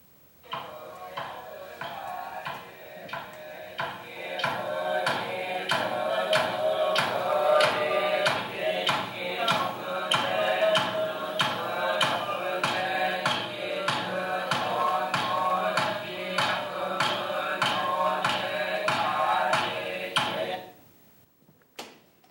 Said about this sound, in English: He's also using it as a time instrument, but he's using a soft padded hammer and with a big size of the wooden fish that he's playing, it gives a hollow, booming sound, almost like a drum.